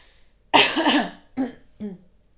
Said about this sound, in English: I'm really sorry. I've got like a tickly throat. Yeah, I see that. You need to just clear your throat. Go on, just go for it.